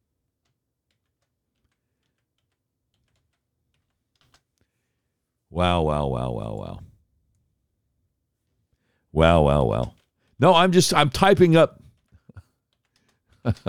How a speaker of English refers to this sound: I'm typing up the Bongino and I are DMing on Twitter. And it's tough to talk and type at the same time.